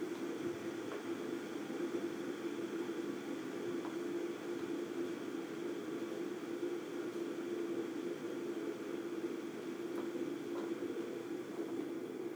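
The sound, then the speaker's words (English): A washer or dryer used by a neighbor outside drones steadily, heard a little from inside, a constant low mechanical hum with a faint whirring hiss that never changes in level. No one speaks. “And probably hear the washer or dryer outside. My neighbor is using them, and you can hear them from inside a little bit, but whatevs.”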